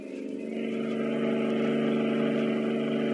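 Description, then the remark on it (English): A pursuing car with a searchlight roars steadily at speed along a road with swamps on both sides, a sustained loud mid-pitched engine drone with a faint rising whine. “They got around that bend in the road. Look. Looks like a trail of gasoline in the center of the road.”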